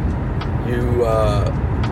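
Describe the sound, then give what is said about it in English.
Steady, loud low rumble inside the cabin of a Cadillac car driving on the road, a constant engine and tire drone with a voice briefly audible over it. “I tell you what, my Cadillac is, it's a big help to ride a car like this.”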